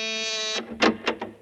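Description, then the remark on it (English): A doorbell at a house in Jackson Heights buzzes with a steady, harsh tone for about half a second, then three short noisy bursts follow in quick succession, like a door being handled. “She came to the door in answer to my ring.”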